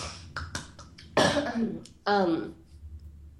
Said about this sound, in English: And, excuse me, I have to cough a little bit.